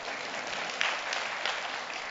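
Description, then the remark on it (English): A crowd claps steadily for a couple of seconds, a dense, continuous patter of many hands at an even, moderate level, with no voices over it. “Yes, one hand clapping. There we go.”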